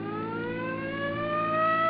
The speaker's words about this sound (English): Come on, hit your siren.